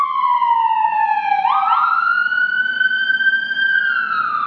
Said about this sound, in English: And Lord, we also just want to pray, Lord, wherever those sirens are going to, Lord, we pray that You would be with those first responders.